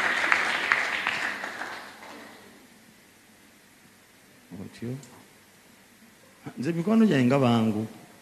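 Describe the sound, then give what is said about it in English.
An audience claps for a friend called to the front to give a testimony, in a dense burst of applause that fades out within about two seconds, followed by a lull and then a voice speaking. “Clap for my friend.”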